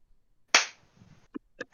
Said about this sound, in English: All right, let's try it again, though. All right, everybody clap on three. One, two, three.